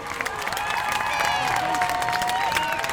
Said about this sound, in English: So let's give them a round of applause for showing up.